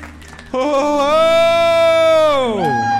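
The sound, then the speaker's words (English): An enthusiastic cheer: one loud, sustained voiced whoop that holds a steady pitch for about two seconds, then slides downward as it fades, over a low background murmur. “Ooh, enthusiastic cheer.”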